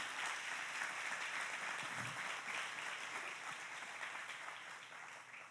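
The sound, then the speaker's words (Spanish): An audience applauds for Jesus, a dense wash of many hands clapping steadily at an even loudness for several seconds, with no speech over it, tapering only slightly near the end. “Dar un aplauso a Jesús.”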